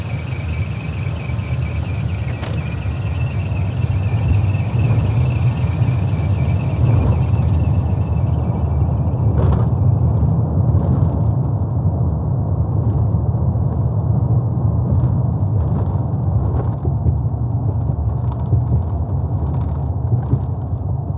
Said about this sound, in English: Right now, we are bringing all of our food scraps to the Staten Island compost facility. Hear the wheels of the vehicle hitting different like pavement structures, and I'm pretty sure it's the BQE where it goes like da-dunk, da-dunk, da-dunk, da-dunk